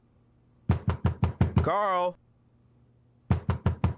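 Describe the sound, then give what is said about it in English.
In a cartoon, a fist pounds on Carl's front door in a quick run of six loud thuds as Frylock tries to get Carl to open it, a man calls out briefly, then after a short pause four more heavy bangs follow. “so he's all distorted looking, pounding on the door”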